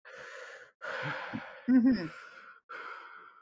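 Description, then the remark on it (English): Someone imitates the character Michael breathing into a phone with heavy, creepy breathing: four slow, raspy breaths, one catching in a brief voiced groan, with short silences between them. “I think this is where Michael starts breathing into the yes. phone mm-hmm.”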